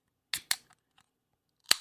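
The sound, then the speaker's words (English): A can of Kane Sea Dream Imperial IPA beer being cracked open: a couple of sharp metallic clicks from the tab, a few faint ticks, then a louder crisp snap with a brief fizzy tail. No one speaks. “Now, this is Power Bombs and Potables, and I have a beer that I have yet to crack open.”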